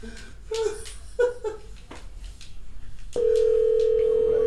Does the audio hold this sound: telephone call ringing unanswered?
yes